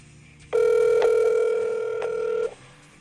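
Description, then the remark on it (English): A telephone call connecting: a steady, mid-pitched electronic tone holds for about two seconds, broken by a couple of soft clicks, with no one speaking. “So let's give old Emily a call and get started on this Lion King story.”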